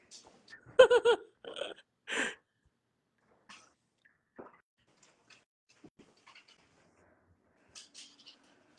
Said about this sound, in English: So, oh my god, hold on, because she's barking hard.